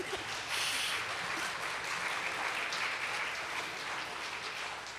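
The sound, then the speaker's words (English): Steady applause from a crowd after a Bible reading of the Christmas story fills the whole stretch, a dense even patter of many hands clapping at once, fairly loud with no voices standing out. “Yeah, you can go and clap.”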